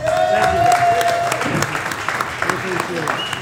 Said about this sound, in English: One more time. Show each other a round of applause. I'm going to give you a standing ovation. You guys deserve it.